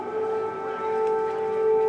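An air raid siren in Kyiv, Ukraine, goes off at St. Michael's cathedral, sounding one steady, sustained tone with a strong mid-pitched hum and higher overtones. It holds nearly level throughout, faint background noise underneath and no voices.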